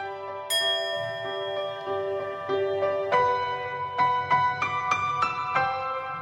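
A bright bell rings out over sustained piano notes, followed by a run of struck tones that climb in pitch. No one speaks, and the ringing tones overlap and linger.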